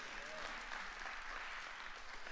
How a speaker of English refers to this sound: If you believe that today, give the Lord a hand clap and say amen.